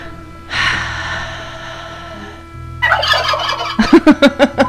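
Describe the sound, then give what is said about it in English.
A turkey gobbles loudly: a rattling burst of calls, then a rapid series of five or six sharp, rhythmic gobbles at the end. No one speaks. “The turkeys feel bad too.”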